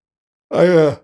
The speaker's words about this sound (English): You're yawning.